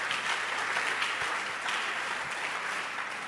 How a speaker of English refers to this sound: Thank you and clap your hands for our bishop.